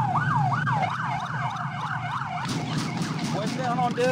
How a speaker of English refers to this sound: So he turned his siren off to talk on the radio, and he turned his siren back on when he's chasing.